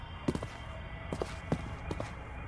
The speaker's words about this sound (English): And I just snuck down to the pier, close to where Mr. Pyman was roped up. But I didn't hear any noise, until I heard some footsteps. It was two policemen, the tall one and the fat one.